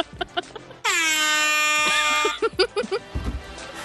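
A single loud, sustained air horn blast played from an app, lasting over a second, with a bright harmonic tone, briefly interrupting people talking before and after it.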